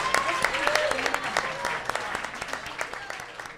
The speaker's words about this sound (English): Give it up for Sean Giambrone. New episodes of the Goldbergs air very, very shortly. Give him a big giant round of applause for Sean.